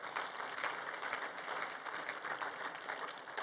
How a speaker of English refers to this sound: So if this is your first time here, we just want to honor you. And we do that around here by clapping for you.